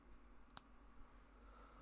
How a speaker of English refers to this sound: How loud was it? Loud? Yeah, it's like, if I don't, like, you know, if I leave it for, like, half a day or a day or whatever, like, it'll be a loud click, like clicking my knuckles as well, like I can.